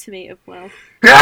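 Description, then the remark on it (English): A person speaks briefly, then a single loud, sharp sneeze bursts out at the end, harsh and noisy across the whole range. “Oh, excuse me. Bless you.”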